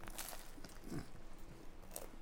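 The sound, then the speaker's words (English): Crunching as crusty bread is bitten and chewed, a few sharp crackly bursts over about two seconds, quiet with no talking. “What do you think about the bread? Crunchy.”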